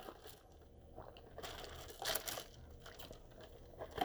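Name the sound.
drinking water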